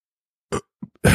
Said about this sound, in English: Sorry, it happens on this drinking show. You burp sometimes.